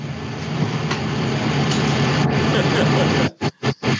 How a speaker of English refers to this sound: Is that rain, fan? That's a fan? No, it's the air conditioner. Wow, it got real loud.